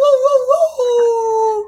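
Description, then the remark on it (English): A voice imitates a wolf howling at the moon: one sustained, wavering tone that rises slightly, then holds steady before trailing off, loud with no other sounds. “And then we've got Worldwide Howl at the Moon Day.”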